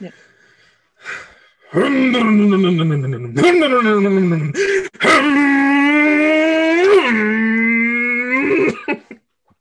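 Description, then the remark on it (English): A person imitates a car engine revving with their voice as a signature warm-up rev before starting a recording, a few sustained, rising and falling growls, loud and buzzy, each surge climbing in pitch before easing off. “we like to start up the recording by doing a rev, by doing a signature rev. If you could do your Okay. best car rev.”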